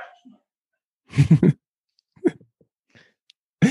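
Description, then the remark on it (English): A female puppy lets out a quick cluster of sharp, high yaps, followed by a softer single bark and another brief yelp at the end, with quiet pauses between. “That's the puppy.”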